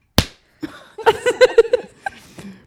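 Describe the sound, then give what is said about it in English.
A single sharp, loud slap of a woman's hand against her own leg, with the mic moved down to the leg, rings out, followed by a burst of voiced laughter or vocal sounds and a few short exclamations. “You just like mom used to do. The slaps.”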